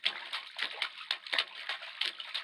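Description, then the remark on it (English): Quick, regular footsteps splash through a long, shallow puddle in a dark tunnel, each step a wet slap and spray in a steady hurried rhythm, moderately loud, with no voices. “Tried to pick up the pace, but that long puddle was splashing my chino something off.”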